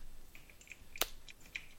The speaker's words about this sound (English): There you go. That's all they get. Slow clap. Slow clap.